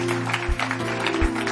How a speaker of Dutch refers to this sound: Come on, let's put our hands together for Jesus right now. Laten Jezus een applaus geven.